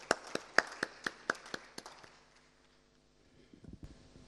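A brief burst of clapping: about nine sharp, evenly spaced claps in a quick steady rhythm, then the sound drops away to near quiet with a few soft taps near the end.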